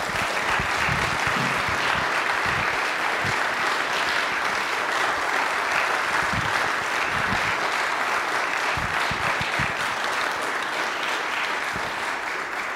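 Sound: audience round of applause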